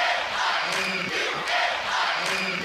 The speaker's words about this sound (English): Panther crowd just to our left chanting.